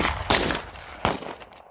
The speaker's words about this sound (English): With his right leg over the saddle, he looked at the gun barrels coming out from under cover, lining the streets as a volley of shots rang over him.